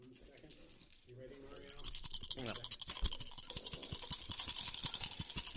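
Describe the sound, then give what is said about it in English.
Dense, rapid clattering as several people each roll four six-sided dice at the exact same time, a rattling burst that follows brief murmured voices and keeps going for a few seconds, loud. “I'm really wondering how epic this is going to sound when we all roll our 4 6-sided dice at the exact same time.”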